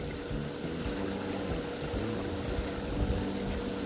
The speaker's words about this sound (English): You can hear the sound of a stream running down.